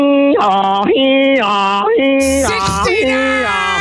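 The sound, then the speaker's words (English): A voice imitates an English two-tone emergency vehicle siren, alternating between a high and a low pitch in a steady repeating rhythm, loud, with a brief breathy burst partway through. “But like an English siren is more like”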